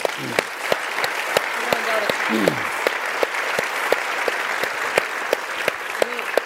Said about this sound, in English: So we should clap for that.